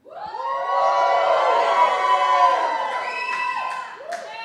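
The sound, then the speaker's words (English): A loud crowd shouts and cheers together, a dense wash of many voices rising and sustained for several seconds before tapering off, shouting in response to a reading of Psalm 100's call to shout. “The Bible says, shout.”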